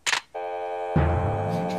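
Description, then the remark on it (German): A short click, then a steady electronic telephone ring with a buzzy, harmonic-rich tone that holds without pause, a lower humming layer joining partway through. “Es klingelt.”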